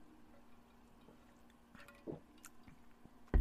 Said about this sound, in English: Let me take a water before we do that.